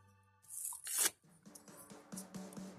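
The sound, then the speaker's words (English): Paper being ripped into small pieces of about 2 inches for compost: a loud tear followed by a quick series of shorter rips and rustles, with no voices. “Anyways, I'm gonna get down to about like 2-inch pieces and put them all in there.”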